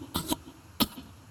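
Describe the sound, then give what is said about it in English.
Faint coughing coming from a nearby bush: a quick double cough, then a single short cough about half a second later. The bursts are breathy and raspy, with quiet background and no talking. “You hear like a very faint coughing sound coming from somewhere near you.”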